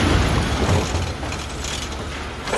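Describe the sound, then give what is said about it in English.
A truck dumps a heavy load of waste onto the hard floor of a waste facility in Singapore, making a loud, continuous rumbling crash with scattered clattering debris, filling the whole moment. “And then dump everything on the floor.”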